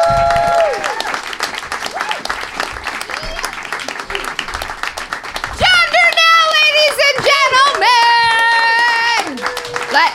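An audience at a stand-up comedy show bursts into steady, dense clapping, and about halfway through loud high-pitched whoops and cheers rise over the applause and carry on to the end.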